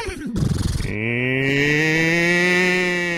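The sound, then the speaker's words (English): A person imitates a cow's moo, starting with a rough guttural grunt and then sliding into a long, sustained, nasal lowing tone held loud for a couple of seconds. “Okay, I could do a cow pretty good.”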